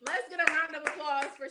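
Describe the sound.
A few scattered hand claps, about four sharp slaps at an uneven pace, ring out over steady voices talking and cheering nearby.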